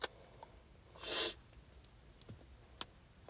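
A single short, breathy sniff rises and fades in about half a second against a quiet background, with a few faint clicks before and after and no one talking.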